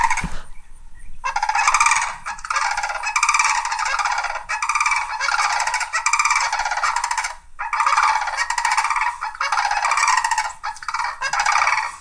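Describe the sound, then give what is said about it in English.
Loud, resonant trumpeting bird calls with a rattling tremolo, repeated in long rolling bursts with brief pauses for about twelve seconds, clear with no talking. “Its resonance is remarkable and its carrying power is increased by a distinct tremolo effect.”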